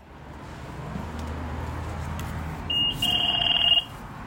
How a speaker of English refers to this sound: that sound of a $2 bus fare payment will cease to exist come July 2023